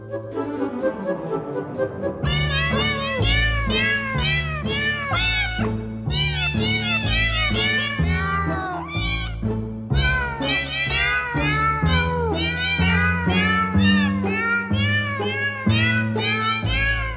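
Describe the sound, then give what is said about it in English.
Rapid strings of cat meows, pitch-shifted into the melody of a well-known piece of music from a 19th-century ballet, play one after another over a steady bass accompaniment. Loud and continuous for the whole stretch, with no talking. “You can support the … by searching … wherever you download your cat-related music.”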